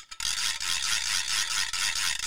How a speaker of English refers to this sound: And so we have groggers here at the paper, ready to do a little groggering.